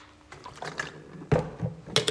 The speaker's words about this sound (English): So I'm going to have a mouthful of water.